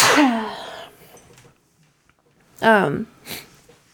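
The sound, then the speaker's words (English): A loud sneeze bursts out, then after a short pause a second voiced sneeze follows with a breathy hiss at its end. “Bless you.”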